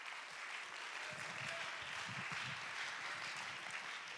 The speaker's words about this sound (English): Let's clap our hands.